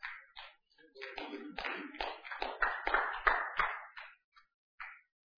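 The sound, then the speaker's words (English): A brief burst of scattered audience applause swells for a few seconds, then thins out into a handful of lone claps before falling quiet. “I didn't expect to get too many claps on that one.”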